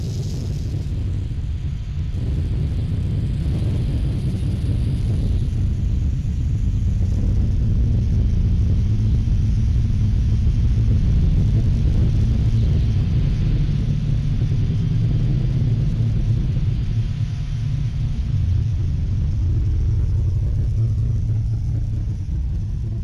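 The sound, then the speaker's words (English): Humming, resonant audio made from recordings of the sun and augmented with instruments by sound artists Connor Boyle and Peter Clemen: a deep drone hums continuously, heavy in the low register with a steady rumbling body and faint airy hiss above, swelling slightly mid-way but never breaking. “Connor Boyle and Peter Clemen, and others have taken that and augmented that file and with instruments and different things and made this really beautiful, huge, humming, very resonant audio that goes with the sun.”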